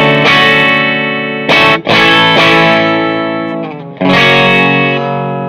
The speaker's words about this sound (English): Got a nice thick tone, that loud jazz master tone, a little bite like you're saying.